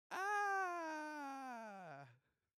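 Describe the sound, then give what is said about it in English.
A voice lets out a single loud, drawn-out ghostly wail lasting about two seconds, mimicking a scream as a tagline for a toy called The Scream, its pitch slowly sinking lower before cutting off, with no other sound around it. “And don't forget, they didn't give me a tagline for The Scream. Well, I guess it would go a little something like this.”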